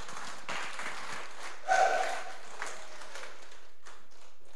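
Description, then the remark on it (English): An audience at a church gathering applauds the pastor as he comes to the stage, a steady, dense, crackling wash of clapping. A brief whistle or cheer rises out of it partway through, then the clapping thins out near the end. “So shall we give Ali a huge round of applause as he comes to the stage?”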